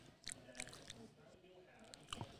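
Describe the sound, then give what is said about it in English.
Chewing with a few crisp, crunchy bites at irregular intervals over a low background murmur, fairly quiet overall. “I'm chewing. Though. That was a run. Hella chewing.”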